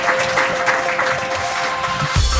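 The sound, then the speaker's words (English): An audience at a debate event claps steadily for the Washington, D.C. team, a dense, sustained patter of many hands with no voices over it, ending with a low thump near the close. “All right, let's give the Washington, D.C. team one more round of applause.”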